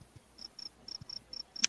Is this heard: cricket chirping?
yes